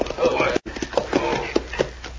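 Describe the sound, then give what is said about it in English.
Horse hooves clip-clop in an uneven, unhurried rhythm of sharp knocks, mixed with voices talking over them, as riders arrive at a cafe to tie their horses at a hitch rail. “Tie our horses with this hitch way and we're going to go in.”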